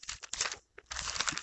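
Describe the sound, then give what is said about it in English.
Dry, crinkly rustling of paper Bible pages being flicked through in quick bursts to find Psalm 110, with a brief pause midway, fairly loud, no voices. “I have paper, you probably don't.”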